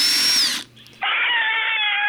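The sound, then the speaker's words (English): A power drill whines at a high pitch while boring eye holes through a pumpkin carved as a ghost, spraying pumpkin, cuts out briefly, then starts again with a slightly lower, steady grinding buzz. No voices are heard. “You see how quick a power tool does that? It just does.”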